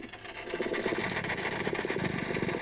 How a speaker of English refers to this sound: There you go. There you go. That's a dolphin.